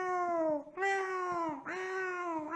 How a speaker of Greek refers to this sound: Το έχουν μυρίσει το φαΐ οι γάτες και είναι τουλάχιστον 40 γάτες. Δεν κάνω πλάκα. Έχει παντού. Στο air condition, στο παράθυρο, πίσω, στην πόρτα και κάθονται όλες και νιαουρίζουν και κάνουν.